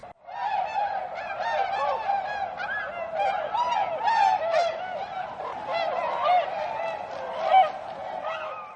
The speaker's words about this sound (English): flock of snow geese or tundra swans on their way to breeding grounds in the high Arctic. They may be thousands of feet in the air, so you might not spot their long V formations, but it's thrilling to catch their high-pitched calls all the same.